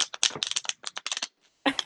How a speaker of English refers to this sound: Shuffle ability is the most important thing for me in getting a new tarot deck.